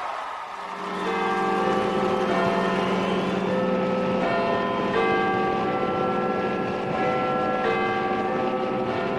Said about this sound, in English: And then London, where they have their own big bell to ring.